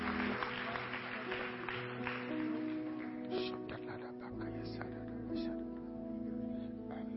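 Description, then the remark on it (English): An audience claps its hands to God after a prayer, in a steady, dense patter that lasts throughout, layered over sustained, low, held musical tones. “Put your hands together. Clap to God.”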